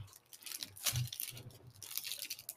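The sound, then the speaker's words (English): Crunching and tearing as a knife cuts through a Yankee nougat candy bar, a steady run of crackly, sticky scraping with a sharper crunch about a second in, no voices. “Yankee bar. Yeah, it's a nougat. Yeah. Yankee bar. Cool. This one we can cut.”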